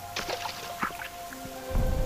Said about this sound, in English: It happened that the Lord blessed the land with rain on our visit, so we found shelter within some ancient ruins, while outside it poured.